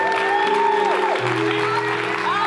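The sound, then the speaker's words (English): A church audience applauds steadily, giving God a hand clap, a dense wash of clapping that holds at an even level while sustained organ or keyboard chords sound underneath. “Would you give God a hand clap?”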